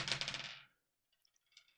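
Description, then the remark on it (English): A rapid, bright clatter of dice rolled across a table for about half a second, then a few faint scattered clicks as they settle. No voices. “All right, let me roll these dice and see what happens.”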